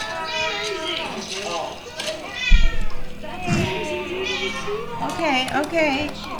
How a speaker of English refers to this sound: We're distracted. Sorry. Cat.